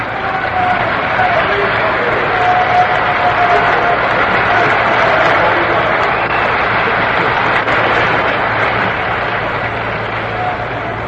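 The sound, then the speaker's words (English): A large stadium crowd at a World Series baseball game applauds and cheers batter Johnny Podras steadily, a dense wash of clapping and murmur that holds at a fairly loud, even level for the whole stretch. “Johnny Podras getting the round of applause he richly deserves.”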